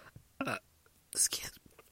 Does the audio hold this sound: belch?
yes